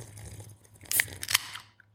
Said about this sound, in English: The nice, refreshing, crisp sound of a Coca-Cola opening when it's 105 degrees outside.